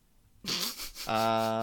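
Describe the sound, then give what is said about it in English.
A fart sound effect: a breathy sputter that breaks into a loud, sustained buzzy rasp, lasting about a second with no talking. “Yeah, can I get a medium well fart?”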